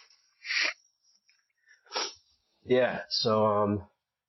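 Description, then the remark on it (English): Someone blowing their nose: two short, breathy puffs of air, then two louder, longer honking blows with a buzzy, trumpet-like tone. “All right, after all that, let me blow my nose.”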